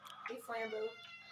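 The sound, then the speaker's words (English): A cat gives a short, drawn-out meow, its tone rising and then falling, with a soft breathy sound before it. “Say hi to the podcast. Meow, meow.”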